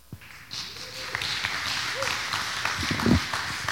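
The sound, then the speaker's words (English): An audience claps steadily for a video, a dense wash of overlapping hand claps rising after a brief quiet start and holding at a fairly loud level, with some crowd voices mixed in. “Thanks for clapping for our video.”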